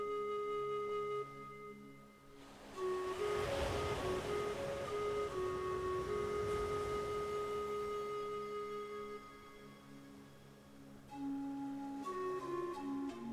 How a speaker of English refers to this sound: Feel what it would be like to imagine that you are standing barefoot on that beautiful, safe beach, looking out over the gentle ocean waves as they roll towards the sandy shore.